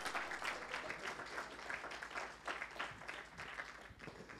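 Steady applause from a crowd, dense overlapping claps filling the whole stretch at a fairly even level, heard from a slight distance with a faint hint of voices beneath.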